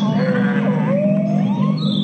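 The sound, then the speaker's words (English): Killer whale calls: high, wavering whistles that sweep up and down in pitch over a steady low rumble, sounding somewhat like a distant siren. No one talks. “Then you got the killer whale.”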